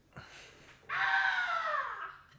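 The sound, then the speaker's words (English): A person lets out one loud, piercing shriek imitating a screaming baboon, held for over a second and sliding gradually downward in pitch, with no talking. “Oh, that's a baboon.”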